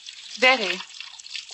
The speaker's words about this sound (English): What on earth are you doing? I'm washing the dishes. I know, but you've washed the same dish four times.